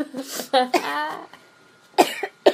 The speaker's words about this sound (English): I'm gonna sneeze. Oh.